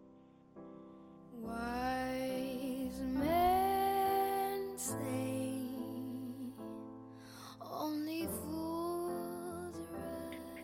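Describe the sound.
A woman sings a slow, tender ballad, holding long notes with gentle vibrato over soft, sustained instrumental accompaniment, clear at a steady, moderate volume.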